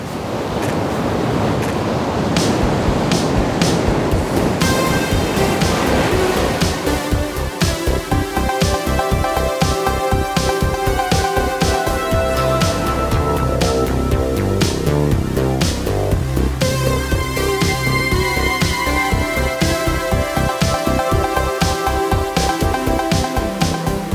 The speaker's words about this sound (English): I recorded the ocean over in Ocean City, Maryland is where I went.